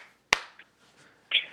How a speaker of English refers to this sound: If you're happy and you know it, clap your hands.